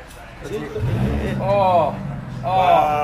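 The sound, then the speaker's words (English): A Ferrari sports car engine revs hard: a low rumble gives way to two loud, rising whining bursts of throttle, roaring. “That's an Italian piece of engineering that right there. That is a car.”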